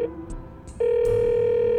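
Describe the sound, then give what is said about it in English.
A telephone receiver, connected by cable to a scrambling telecommunication module on a desk in a CEO suite, clatters with a few plastic clicks as it is picked up, then a loud, steady dial tone hums continuously to the end, with no voices. “She reached for the phone receiver that was connected via cable to a scrambling telecommunication module on her desk.”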